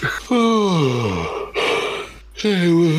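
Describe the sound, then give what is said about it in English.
A big, drawn-out human yawn: a long vocal moan sliding downward in pitch, then a breathy rush of air and a brief rising voiced tail, fairly loud. “Big yawn.”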